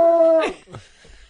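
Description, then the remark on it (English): A small dog lets out a short, high, steady howl, which breaks off abruptly into a few rough yips and faint scuffling sounds. “Does anybody want a dog? They're cute. They're little.”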